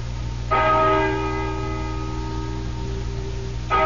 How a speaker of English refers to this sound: Listen to that bell. 6, 7, 8.